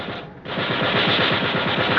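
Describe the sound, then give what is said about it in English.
A ship's gun fires on command at an approaching target about 1,500 yards away, in a rapid, steady automatic burst, a loud rattling stream of shots that briefly dips, then resumes and carries on without pause. No voices are heard. “Get on that gun, Mr. Hayes. When you see him, fire.”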